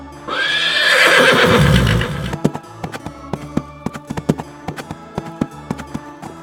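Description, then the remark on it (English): A horse gives a loud, drawn-out whinny, then a flurry of sharp galloping hoofbeats clatters in quick, uneven rhythm, with no voices. “And if you hear galloping horses, fly as fast as your feet can take you.”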